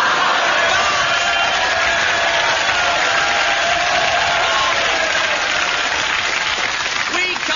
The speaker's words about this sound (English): We have lately received a number of complaints that this program is too noisy and that our audience has been laughing too loud and clapping too much. In fact, we do make a fortune by exporting our spare applause to the Andy Williams Show.